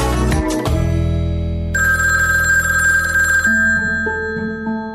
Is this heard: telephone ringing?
yes